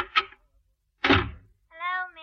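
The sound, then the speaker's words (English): Knocking at a basement door: two heavy, dull thumps spaced about a second apart, the second fuller and longer, followed by a brief voiced sound. “Somebody at the basement door, well, please.”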